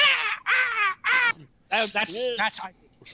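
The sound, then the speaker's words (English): A person imitates a crow, giving three loud, harsh caws in quick succession, followed by a few more strained, wavering cawing calls. “They think we're doing a bird summoning, but we're actually summoning. But we can't do caw, caw, caw.”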